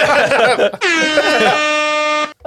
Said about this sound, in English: Hit the air horn.